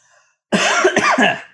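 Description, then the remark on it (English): A loud bout of phlegmy coughing and throat clearing kicks in after a brief quiet moment, several harsh rasping bursts running together for about a second. “And I apologize for all the coughing and like phlegming and shit.”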